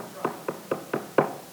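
Five firm knocks in a quick, steady rhythm on a wooden surface, with the final knock the loudest. No one speaks.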